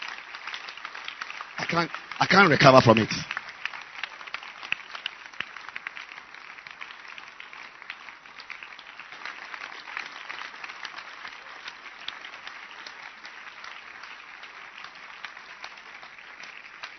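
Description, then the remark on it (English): A church audience claps for the church's shepherds steadily for a long stretch, a dense crackling wash of hands with a louder surge early on, then a steady even patter. A voice speaks briefly over the applause. “Can you clap your hands for the shepherds of this church today for the great work they did?”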